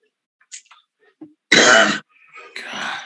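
A loud cough bursts out, followed after a short pause by a rougher throat clearing, with a few faint clicks and breaths just before.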